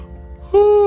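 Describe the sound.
A voice imitates a yawn with one drawn-out, steady, nasal 'aah' that starts abruptly after a brief quiet moment. It is fairly loud, almost bleat-like, voicing Olivia yawning late on her way home.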